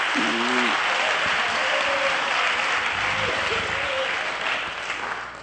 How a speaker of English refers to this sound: Somebody ought to clap their hands unto the Lord, because you know that's right. I wish you would.